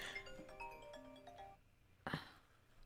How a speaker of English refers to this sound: On the phone again. Do you have to take that?